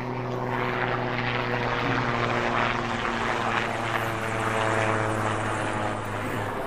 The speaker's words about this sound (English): Excuse me, helicopter.